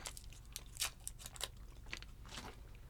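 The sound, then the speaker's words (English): Crunching of hard lemon and orange cough drops being chewed, a run of sharp, crackly bites and crunches in an irregular rhythm over about three seconds, fairly quiet, with no talking. “You and me eating cough crunching. Drops.”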